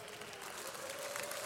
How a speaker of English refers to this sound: Oh, come on, you're clapping already, so there must be some spirit-filled believers in this place.